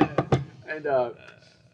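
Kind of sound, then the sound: impact, knocking on wood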